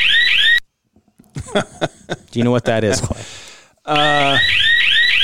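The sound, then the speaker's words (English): A space station alarm sounds loudly, an electronic warbling tone repeating in quick rising sweeps. It cuts out while a person briefly speaks, then starts again just as insistently. “This is an alarm.”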